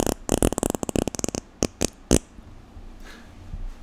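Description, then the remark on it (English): A loud, sputtering fart noise blown into a microphone: a rapid, rattling burst of flappy pulses, then three short separate pops, trailing off into a low, quiet rumble. “I'm farting in a microphone. What the hell? It's like a fart noise.”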